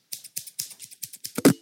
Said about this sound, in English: Oh man, that was so. I got a bit too close with those scissors there. I didn't have an actual scissors sound effect, so I decided to go old school and use actual scissors, and I nearly just chopped my lip off.